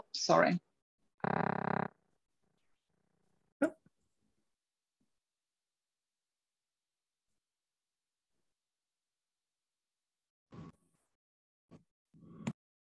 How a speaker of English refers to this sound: So we had a little internet hiccup, but you were just explaining what motivated you to do Reiki.